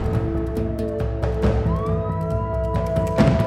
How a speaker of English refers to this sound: You guys can't hear that? Sirens. Police sirens?